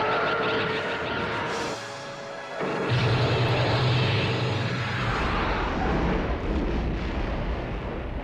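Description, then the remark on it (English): A loud, rumbling explosion bursts in after a brief lull and keeps roaring with heavy low rumble for several seconds, like a big blast in a noisy action scene. No one speaks. “So I had to tell him, aim for that explosion.”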